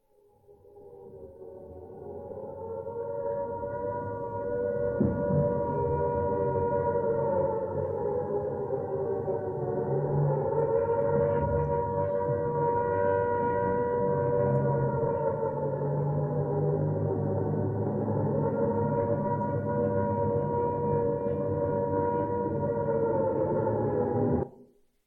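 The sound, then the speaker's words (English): An air raid siren wails steadily on a quiet evening for about twenty-five seconds, its pitch slowly rising and falling in long sweeps. It is loud and sustained, with no voices, and fades in at the start. “Arid sirens puncture the quiet evening.”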